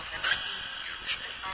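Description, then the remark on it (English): Quiet, hissy electronic output from the Echo Vox ghost box app, run with echo, reverb and auto-blending, with brief warbling, voice-like fragments that smear and echo into a reverberant wash, steady throughout with a few small swells and no clear speech. “And I'm going to show on the screen that the Echo Vox is running.”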